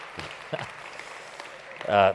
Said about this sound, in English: And give him a clap.